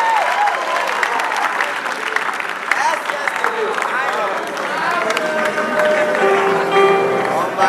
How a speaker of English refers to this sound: Give a mighty clap offering unto the Lord.